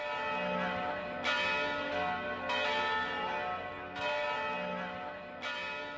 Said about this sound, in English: If you happen to be in Santa Barbara during the first week of August and you hear the mission bells ringing, it's a signal. Old Spanish Days, Fiesta, is about to get underway.